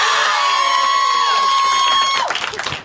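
An audience roars and shouts together on cue, making noise to vote that Harry will live, in a sustained burst of cheering, loud and dense with high-pitched whoops, then breaks into scattered claps and yells as it fades out.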